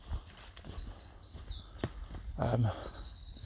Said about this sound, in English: Hear the birds in the back.